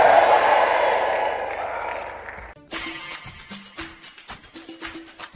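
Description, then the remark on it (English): A large audience claps and screams in loud, sustained praise of God, then the crowd noise cuts off abruptly and rhythmic music with a steady beat takes over. “Come on, clap your hands and scream like your voice is yours and praise God.”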